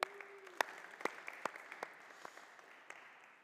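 A small audience gives a brief round of applause, with a soft wash of clapping and a few sharper individual claps popping out before it tapers off toward the end.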